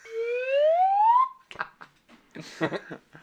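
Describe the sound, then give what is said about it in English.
A slide whistle glides smoothly upward in pitch for just over a second, a bright, loud, breathy tone, then stops abruptly as a voice starts talking. “Oh, slide whistle. Slide whistle. I'm just going to throw that in there every once in a while.”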